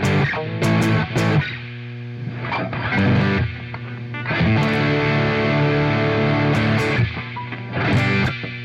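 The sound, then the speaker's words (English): An overdriven electric guitar through a tweed-style amp with heavy reverb plays a loud run of sustained, gritty chords with sharp pick attacks, alone. “It's not like the best tweed sound I've ever heard.”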